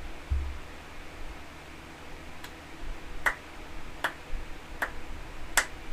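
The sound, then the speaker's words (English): Four or five sharp, evenly spaced hand claps in agreement, the first faint, over a steady low background hiss, with no one speaking. “I clapped because yes, I 100% agree.”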